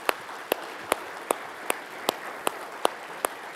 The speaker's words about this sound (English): Would you give them a big hand of applause?